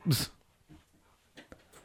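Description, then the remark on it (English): A dog lets out a sharp, whiny yelp, followed by a few quieter whimpers and snuffling sounds over the next second or so. “So, we got dogs losing it here.”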